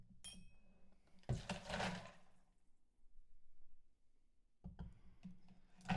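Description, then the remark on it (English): Ice cubes and water are dumped out of a rocks glass, rattling and clinking against the glass with a splash of water, a short burst followed by a quiet pause and another brief clatter near the end. “Let's go ahead and dump the ice and the water out of the rocks glass.”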